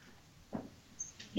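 A dog barks twice outside the front door, two short sharp barks nearly a second apart, sounding somewhat muffled against a quiet background.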